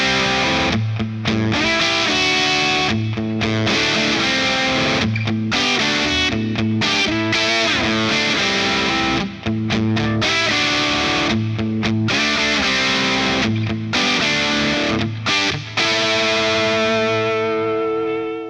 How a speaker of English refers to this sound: I'm going to use a Maxon Sonic Distortion in front of the Storm that's going to go into the Marshall. Everything is the same, except now I'm going to use the Maxon for a little more gain. Let's try it with the Storm off first.